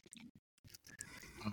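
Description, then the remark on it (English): Wet chewing of a mouthful of chicken wings, a run of squishy, irregular bites broken by a brief pause, then more moist smacking sounds, fairly quiet overall. “Of course, I've got to do this with a mouthful of chicken.”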